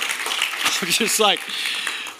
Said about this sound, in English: I'm talking while you're clapping. You can clap. That's totally fine.